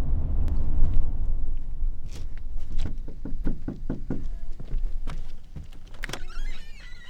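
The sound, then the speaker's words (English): Knocking on a house door at a student's home address: a quick, steady series of about half a dozen firm raps over a low rumbling background with no one speaking, and nobody answers. A school liaison is looking for children who have not been at school all week. “He's got a few different addresses for them. Nobody answers the door at the first two.”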